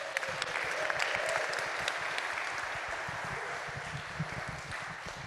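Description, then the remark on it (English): A crowd breaks into sustained applause, many hands clapping in a dense, steady patter that stays fairly even and loud throughout, with no voices standing out. “So I'm going to ask for one great round of applause for all the teachers that are upstairs that can't hear us.”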